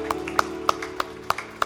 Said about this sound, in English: And let's give the Lord a big clap offering. Would you just thank him?